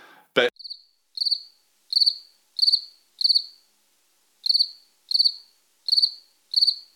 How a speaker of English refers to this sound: You can get one that is a cricket chirping. Mm. Exactly the same scenario.